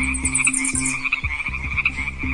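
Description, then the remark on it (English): A dense chorus of frogs croaking steadily outdoors, with rapid overlapping pulses and a continuous high insect-like trill running underneath; no voices. “Can you hear birds? Maybe frogs? How about crickets?”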